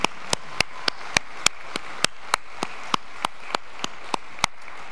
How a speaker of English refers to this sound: And let's give another round of applause, I think.